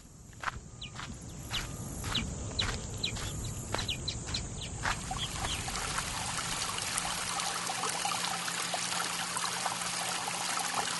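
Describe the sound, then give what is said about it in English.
A steady babble of shallow running water from a brook fills the scene, with crisp crunching steps or taps through the first few seconds and faint birdsong above, no voices; a nature sound recorded outdoors by WBEZ reporter Indy Kara. “A lot of you requested to hear the peaceful sounds of nature, a babbling brook, chirping birds, even a rooster crowing.”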